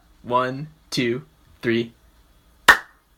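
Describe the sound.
A voice calls out three short counts, then a group claps once in unison: a single sharp, loud burst after a brief pause, followed by quiet.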